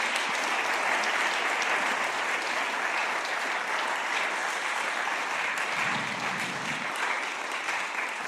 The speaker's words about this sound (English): So should we give them a big clap, a big thank you?